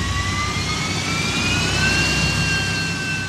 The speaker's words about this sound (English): Magpie feels a bit of a thrill as the airplane speeds up and lifts into the sky.